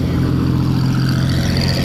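A Bugatti car engine gives a deep, steady growl, loud and continuous with a strong low rumble and no voices over it.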